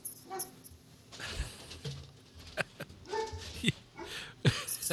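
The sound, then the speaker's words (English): A dog makes a string of short, uneven noises, with whiny yelps and huffing bursts scattered across a few seconds over a low background rumble. “Between my mother and my dog.”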